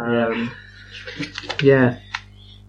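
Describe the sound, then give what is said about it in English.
Quick, clicky presses of the L2 and R1 buttons on a game controller, a short burst of several taps, mixed in with a voice making sounds over them. “You just press the buttons.”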